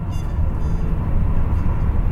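A night train rolls along rails with a steady, heavy rumble, continuous, with a rough shuddering, thumping texture and no distinct pauses. No voices are heard.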